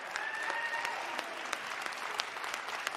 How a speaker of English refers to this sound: Give Wendy and her husband a loud round of applause.